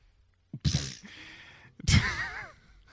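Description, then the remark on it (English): A person sneezes: a sharp breathy intake, a short pause, then a loud, explosive burst with a wavering voiced tail that fades over about a second. “Ah, bless you.”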